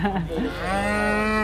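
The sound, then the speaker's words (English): A single loud cow moo at a farm cow pen, a long low sustained bellow with rich harmonics that rises slightly and holds steady before cutting off, heard on its own without talking. “We're just coming up to the cow pen.”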